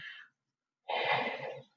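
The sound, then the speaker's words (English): A short breathy intake, a brief pause, then a long, airy yawn lasting nearly a second, with a low, throaty voiced groan underneath that fades out at the end; a person yawning at 7 a.m. without coffee. “Oh, excuse me, I yawned.”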